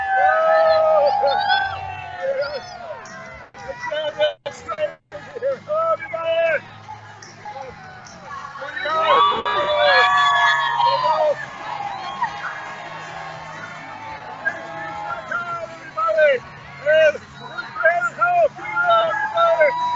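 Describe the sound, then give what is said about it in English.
A large outdoor crowd in rain and mud murmurs and chatters continuously, with bursts of cheering and whoops rising above the babble, steady throughout. “I'm gonna bring you all out to the crowd here.”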